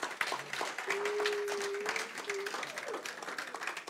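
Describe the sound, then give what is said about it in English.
A room full of people breaks into steady applause, dense overlapping claps continuing throughout, with a faint sustained tone and some murmuring mixed in. “Yes, clap.”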